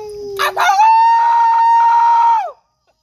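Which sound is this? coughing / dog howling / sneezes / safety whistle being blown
dog howling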